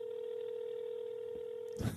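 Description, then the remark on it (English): A steady telephone keypad touch-tone sounds alone for nearly two seconds, clear, then cuts off into a brief burst of noisy clatter, heard while using an automated movie-listings phone line. “If you know the name of the movie you would like to see, press 1 now.”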